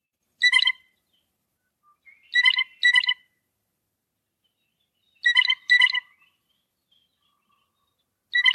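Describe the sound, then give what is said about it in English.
A blue jay's bell call: clear, ringing, metallic notes given singly and in quick pairs, spaced by silent gaps, with no talking in the background. “That's referred to as their bell call.”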